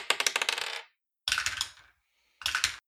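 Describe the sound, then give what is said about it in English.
Dice clatter across a hard tabletop in three separate rolls for a stealth check in a tabletop game, each a quick burst of sharp rattling clicks that settles within a moment, with no talking. “Okay, roll a stealth check.”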